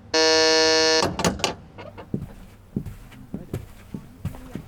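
A loud electronic buzzer sounds for about a second as one of a series of locked doors along a first-floor hallway is released, followed by metallic latch clunks, the door swinging open, and a few quiet footsteps.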